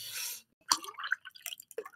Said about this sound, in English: I need to pour some more coffee here. Give me a second. My coffee's getting cold.